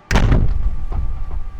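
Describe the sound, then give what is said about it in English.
A single heavy, dull clunk strikes against the glass of a phone booth, a sudden low thud followed by a brief rumbling decay and faint softer knocks, with no voices. “But you also hear a clunk against the glass.”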